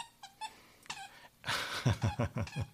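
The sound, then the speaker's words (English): A dog whimpers in short, high, thin whines, then breaks into a quick run of about five rhythmic, louder whiny cries, with no one talking. “Come on, dog.”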